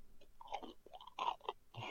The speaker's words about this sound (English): I'm gonna take a fat munch out of this roll.